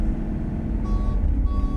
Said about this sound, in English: There's a bus! Oh my god! Oh my god. Hit the brakes! Hit the brakes!